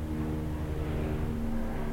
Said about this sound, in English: We don't hear a lot of helicopters around here. There it goes.